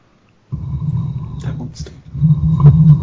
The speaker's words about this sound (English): Sorry, we're trying to prevent our cat from tackling this microphone.